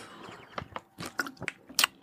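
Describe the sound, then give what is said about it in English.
A slurping sip of Nespresso Il Café coffee, made in the original line: a string of short, wet, crackly mouth bursts, fairly loud and intimate, with no talking. “Has it been a while since I slurped into your ears? That is a nice Il Café coffee from Nespresso, made in the original line.”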